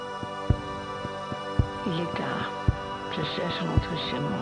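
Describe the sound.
An ambient electronic intro: a sustained synth drone with soft, evenly spaced low thumps about once a second, and a voice begins speaking over the music partway through.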